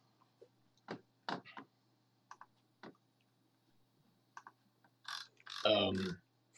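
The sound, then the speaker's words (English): A voice imitates the hooves of Kingsguard riders on horses riding past, going north, with a series of sharp tongue clicks, irregularly spaced, ending with a louder breathy, grunting vocal burst. “But you see a bunch of these Kingsguard in their gold armor, white cloaks, the Kraken-shaped helmets, and they ride past on horses, going north. So the direction you're headed, they're going that way. Clop, clop, oh. Clop, clop, clop, clop.”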